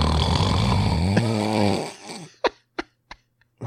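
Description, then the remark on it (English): A voice imitates a woman's long, loud, raspy snore, rattling and gravelly like a raspy morning voice, which fades out and is followed by four short, sharp taps in the quiet. “She's snoring so fucking loud that I thought she was talking or yelling to me.”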